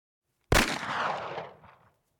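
A single loud gunshot cracks out sharply, then its reverberating echo rolls away over the next second or so. No voices accompany it.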